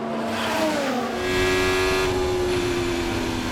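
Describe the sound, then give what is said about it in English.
High-pitched Formula 1 race car engines whine loudly at the Miami Grand Prix race, their tone sliding downward as the cars sweep past at speed, with a steady roar of crowd and track noise underneath. “And of course, there's also the actual race.”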